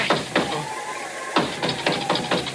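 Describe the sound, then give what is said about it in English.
Nine sharp knocks rap out in an uneven rhythm: two spaced ones, a pause, then a quicker run of seven, each a dry, solid thud with no voices. They are the sacred nine knocks of Oompa Papa. “That was the sacred nine knocks of Oompa Papa.”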